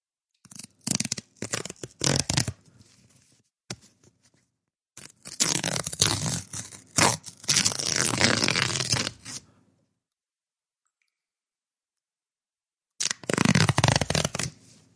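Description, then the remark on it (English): An envelope containing a check is torn open: paper rips and crinkles in bursts, short tearing sounds, a longer ragged rip with rustling, a pause of silence, then another brisk tear, with no voices. “Let's open this here check.”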